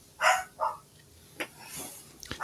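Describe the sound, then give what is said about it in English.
A dog barks twice in quick succession, sharp, followed by fainter scuffling and a couple of softer noises. “Your dog passionately agrees with you.”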